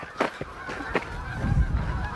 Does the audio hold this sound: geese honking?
yes